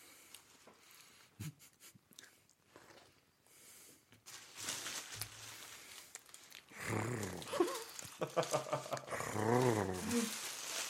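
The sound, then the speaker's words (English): A person voices a mock sassy lion, starting with quiet shuffling and breaths, then building into loud, wavering growly vocal sounds with sliding pitch over the last few seconds. “A sassy lion.”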